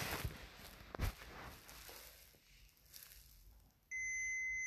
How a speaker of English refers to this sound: Ah! That beeping is annoying.